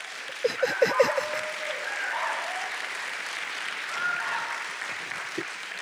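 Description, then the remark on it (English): An audience breaks into a soul clap: a handful of sharp, loud claps up front, then a steady wash of crowd clapping that carries on at an even level with faint voices mixed in. “Soul clap, y'all.”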